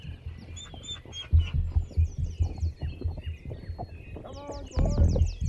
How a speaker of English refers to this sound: Horses. In the distance. You hear them? It sounds like more than one.